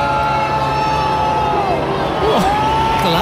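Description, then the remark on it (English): A large concert crowd in Cork, Ireland, boos the performer at his last concert there in a loud, continuous wash of overlapping voices, with sustained jeering tones that rise and fall over a steady rumble of noise. “A lot of booing. Crowd turning on him there.”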